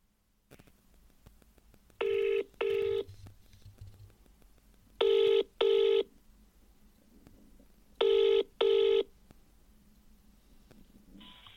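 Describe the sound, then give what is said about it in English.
A telephone ringing tone, from a call to Santa's workshop, repeats three times in a steady double-pulse pattern, each pair of short electronic bursts separated by a pause, heard alone over a faint background hum. “Let's phone Santa's workshop and just see if there's anybody there.”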